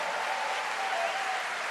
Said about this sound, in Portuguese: Vamos recebê-la com uma salva de palmas.